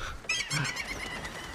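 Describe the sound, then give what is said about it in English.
A seagull gives a single harsh, nasal cry lasting under a second, standing out over a low background hum. “Oh, they got the seagull.”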